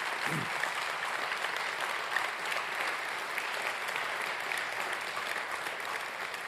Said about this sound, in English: And friends, right now, they are worthy of a hand clap as they stand. Please remain standing.